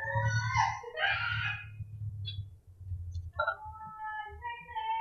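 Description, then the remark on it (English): Dogs whine and vocalize in several high, wavering, sliding cries, coming in bursts with brief pauses, over a steady low hum. Nobody speaks. “My God, my dogs are talking now.”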